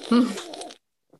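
A close, wet slurp as someone sips a drink: one noisy, sucking pull lasting under a second, then silence and a faint brief click.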